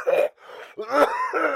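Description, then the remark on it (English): A raspy cough sequence from a man: a harsh burst, a wheezy breath, then a throaty, strained hack and a final rough cough, as if voiced by someone acting out a bad cough. “I didn't like the sound of that, nor the sound of his coughing.”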